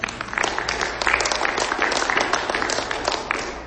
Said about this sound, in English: That's a good time to clap if you want to.